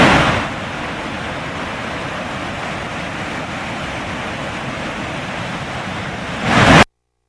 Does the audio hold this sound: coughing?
no